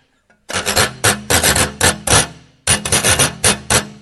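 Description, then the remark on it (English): A metal whisk rasps across a wavy washboard in a quick series of loud, bright scraping strokes, pausing briefly before another rhythmic run of rapid scrapes. “This is the wavy crimp with the whisk.”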